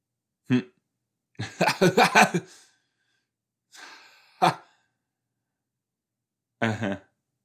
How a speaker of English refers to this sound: excuse me, I just burped twice. It tasted like hummus and blue corn tortilla chips.